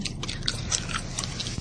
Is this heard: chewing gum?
yes